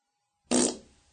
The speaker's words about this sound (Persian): گوزتون گره؟ بی تربیت ها.